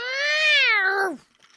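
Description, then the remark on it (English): A single drawn-out cat meow lasting about a second, steady and strong with a rich tone that slides downward as it trails off, followed by quiet. “Oh, aren't you a cute little kitty, eh?”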